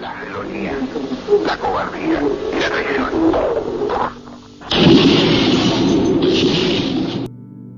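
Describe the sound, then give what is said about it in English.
A voice speaks over a thin, radio-like line in Salvador Allende's last radio address, then a loud, roaring burst of explosions, recorded in the actual radio broadcast, swells up for a couple of seconds before cutting off abruptly. “Those explosions were recorded in the actual radio broadcast.”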